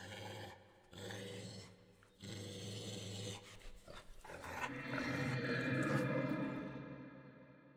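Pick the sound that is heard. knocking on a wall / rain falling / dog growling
dog growling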